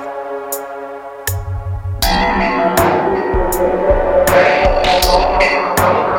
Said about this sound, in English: Sound of the 303 bubbling away in the background. Happy days.